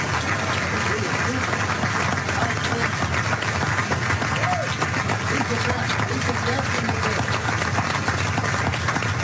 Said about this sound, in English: I think we all should give him a great round of applause.